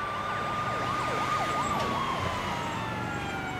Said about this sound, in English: I winced as an ambulance passed by. The sound brought me back to that night when Dad...